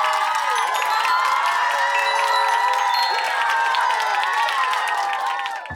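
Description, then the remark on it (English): A crowd claps and cheers loudly, with many excited high-pitched voices whooping over steady applause. It holds at a constant level for about six seconds, then cuts off abruptly. “Give yourself a huge round of applause.”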